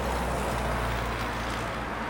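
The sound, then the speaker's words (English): A steady, low roar of road traffic along a village street in Rollingen, cars rumbling by in a continuous wash of engine and tire noise with no distinct pass standing out, and no one speaks. “Cars, cars, cars, and once every 15 minutes a train that passes without stopping.”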